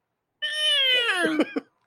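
A cat lets out one long, drawn-out meow, loud, its pitch sliding gradually downward before breaking off in a couple of short, choppy bursts, while its claws are being clipped. No one speaks.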